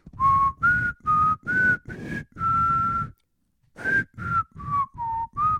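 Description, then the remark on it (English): A pea whistle blown in a string of short, breathy blasts with shifting pitch, like a rough tune, including one longer held note, a brief pause, then several more quick toots. “It's a pea popper whistle on here, the windscreen, so it doesn't let me do that.”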